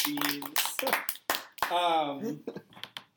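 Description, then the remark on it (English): A few sharp, scattered hand claps break through loud laughter and vocal sounds, the claps landing irregularly rather than in a steady rhythm. “the best part was that you participated in that applause laughter at the end.”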